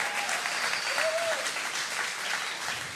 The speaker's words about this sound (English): It is Youth Sunday, Youth Takeover Part 2. Y'all can clap for that. Y'all can clap for that.